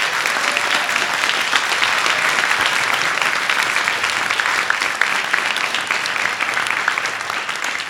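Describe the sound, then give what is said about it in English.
A huge round of applause for producers: dense, steady clapping from many hands, loud and unbroken for the full stretch, with no voices standing out over it. “We're actually going to be wrapping up now, and I actually wanted to give a huge round of applause to all these amazing producers.”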